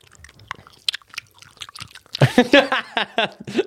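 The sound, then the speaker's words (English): Wet, smacking gum chewing, with several mouths chomping at once; soft and scattered at first, then growing louder and busier halfway through. “I think we should put everything on the highest and we should all start chewing.”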